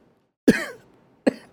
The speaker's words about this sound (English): Oh, wait. You choking, bro? Yeah, I'm going to have a cough.